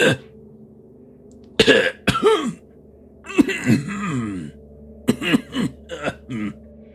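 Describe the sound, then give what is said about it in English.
A man, one of the guards standing at a gate, breaks into a harsh, throaty coughing fit: repeated bursts of hacking coughs and raspy throat-clearing in uneven clusters, loud, with brief wheezy pauses between. “You suddenly hear like this coughing fit begin to transpire from one of the other guards that are just standing.”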